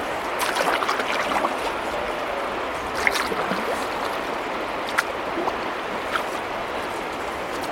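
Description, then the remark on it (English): Fast-moving river water on a salmon run rushes steadily in a dense, hissing wash as the group sweeps around a curve and picks up pace, with a few brief splashes and knocks breaking through now and then. No one speaks. “You can hear the water, it's faster here, the rushing, we're sweeping around a curve.”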